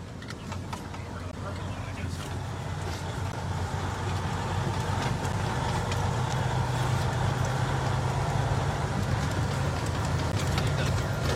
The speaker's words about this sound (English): We wanted to race out in front so that we can get some video of the trucks passing by.